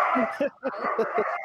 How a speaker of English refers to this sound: Oh, God, there goes the dogs. Yep, there they go. Yeah, they're fighting again. Oh, boy.